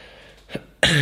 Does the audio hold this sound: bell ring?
no